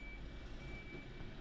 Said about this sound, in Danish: Og der er en lille bil, der skal bakke, åbenbart.